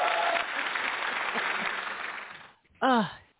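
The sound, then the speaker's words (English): Canned applause crackles steadily for a couple of seconds, then fades out and is followed by a short burst of a loud voice. “Where's the applause?”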